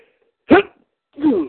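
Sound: sneeze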